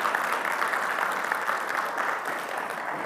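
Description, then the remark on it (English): A large group in a church claps steadily throughout for the church's chief cook, a dense, sustained wash of applause from a crowd filling the room, with no pauses or talking over it. “We give you applause today.”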